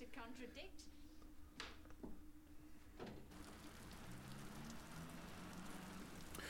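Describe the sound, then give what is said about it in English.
Steady rain hisses throughout, with sharp drips and splashes early on, growing into a denser downpour; muffled voices murmur faintly beneath it. “Oh yeah, lovely sound effect of the rain in the background.”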